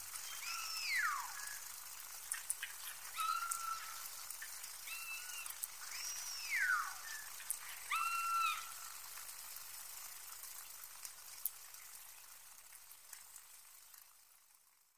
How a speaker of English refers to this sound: The sound you're currently hearing is a recording of the West Coast Community killer whales recorded in 2007.